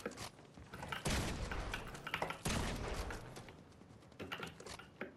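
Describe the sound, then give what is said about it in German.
Video game pistol gunshots crack out repeatedly over about five seconds, loud, with heavier blasts near the start and midway and sharp bursts continuing between them, no talking; the player misses every shot. “Ja, Digga, ich bin gerade so, ich treffe nicht einen einzigen Schuss.”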